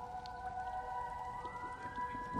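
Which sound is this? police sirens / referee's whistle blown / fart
police sirens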